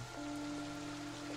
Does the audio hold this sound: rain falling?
yes